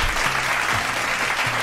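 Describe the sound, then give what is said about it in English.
Steady applause from a crowd for a couple's tenth wedding anniversary, dense and continuous clapping at moderate loudness throughout, with faint low murmuring underneath. “Round of applause for us, man.”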